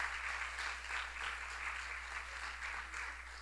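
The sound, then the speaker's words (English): An audience applauds steadily, a dense wash of many hands clapping at once, fairly soft, with no voices over it. “Clap and then join a life group.”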